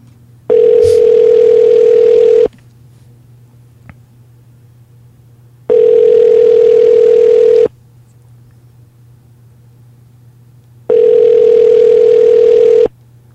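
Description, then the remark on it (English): A phone ringback tone sounds three times, each ring lasting about two seconds with long pauses between, steady and fairly loud over a faint low hum, with no talking. “And what you should do is you should edit it so it only rings once and he answers.”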